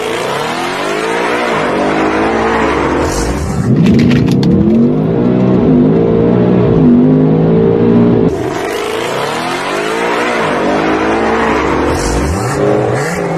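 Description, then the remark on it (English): A loud, powerful engine of a supercharged drag car running pump gas with an octane booster roars and revs hard as it launches, with rising harmonic sweeps as it accelerates and shifts, a brief tire-squeal hiss midway, with no talking. “So let's check out the run here.”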